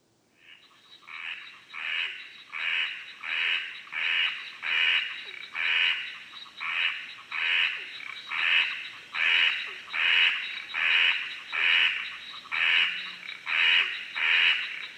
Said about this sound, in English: So this one is, it's often called the dunny frog, because if you're out in the outback, and then, you know, there's, sometimes you go to the shower block or the toilet, and then there's these frogs in the window